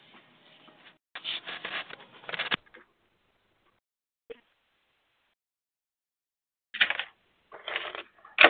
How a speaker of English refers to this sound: What are you typing?